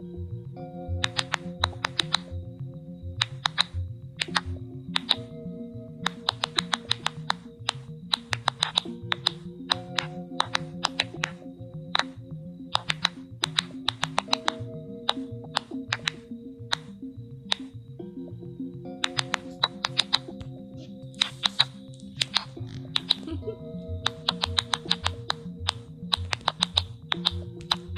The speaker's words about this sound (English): Okay, well, what you just heard is a scream from a plant. So, plants really do scream out loud. We just never heard it until now.